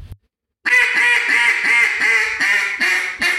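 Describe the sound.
A loud run of about eight raspy hen-duck quacks, an aggressive, pleading boss hen call, each one blending into the next in a rapid, insistent cadence after a brief silence, with no talking.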